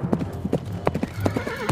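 Six horses gallop pulling a stagecoach, hooves pounding in a quick, uneven clatter, with a brief whinny rising over the hoofbeats. No one speaks.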